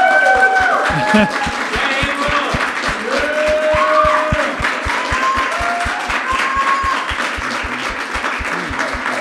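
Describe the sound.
An audience breaks into loud, sustained applause, dense clapping filling the room throughout, with scattered cheers and whooping voices rising above it.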